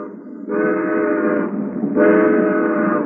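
A passenger train that has just crossed into Virginia rolls along with a steady low rumble, broken by two long, loud, multi-toned horn blasts, one after the other, with no one talking.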